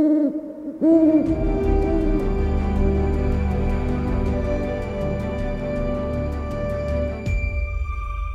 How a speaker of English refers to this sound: Several hours later, he was awoken by the sound of an owl hooting.